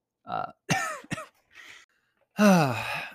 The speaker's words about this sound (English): Cough break number 3. We're going for the record. Record cough breaks in 30 minutes.